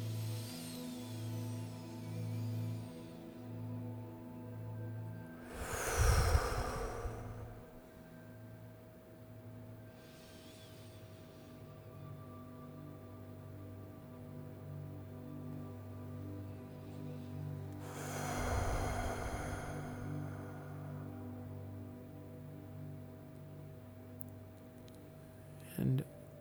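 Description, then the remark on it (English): Two strong, breathy exhales, like blowing out a candle, about twelve seconds apart, with a softer breath in between, as a person takes big breaths into the belly, chest and shoulders during a guided meditation, against a steady low droning background. “And just start by taking a couple big breaths, breathing in your belly and your chest and your shoulders, and then exhaling like you're blowing a candle out across the room.”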